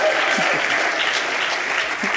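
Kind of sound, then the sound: crowd, audience applause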